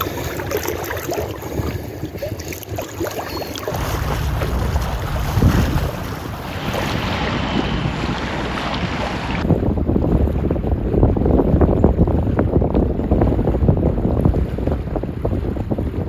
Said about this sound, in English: in the gurgling waters of the Rio Grande, Elvis makes his way